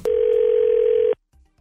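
A single loud, steady telephone ring tone from a call placed by the 102.9 The Wolf morning radio show for its Second Date Update segment holds one even mid-pitched note for about a second, then cuts off abruptly, leaving near silence with a little faint low noise.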